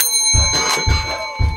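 A bright, sustained ringing of a quiz answer bell, loud, with three dull low knocks spaced about half a second apart beneath it. No one speaks.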